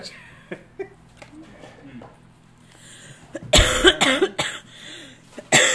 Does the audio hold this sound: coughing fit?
yes